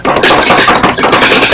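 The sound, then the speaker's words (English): A loud, sustained drum roll: rapid, dense rattling strokes blur into a continuous crisp roar for about a second and a half, with no voices over it. “Now we're going to have a bit of a drum roll and go over to Pam”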